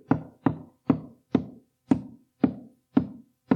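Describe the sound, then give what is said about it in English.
A steady series of eight firm knocks imitating knocking on a door, evenly spaced about half a second apart, each a sharp wooden thud with a short decay, clear with no voices. “Well, after a little while, Peter kept on knocking.”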